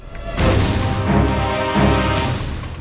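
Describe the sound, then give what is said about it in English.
Cannon fire from the crews of the Cumberland, taking on water in the James, firing at an oncoming iron vessel, booms out in about three heavy blasts, each followed by a loud, rumbling roar that fills the gaps between shots, with no voices. “Even though the Cumberland was taking on water, her crews continued to fight as best they could, firing any available cannon at the iron behemoth headed their way.”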